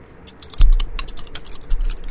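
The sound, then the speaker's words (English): Two metal power coins clink together in a quick, irregular series of bright taps with short ringing tones, plus faint handling rustle and a soft thump early on. “That's two power coins clinking together.”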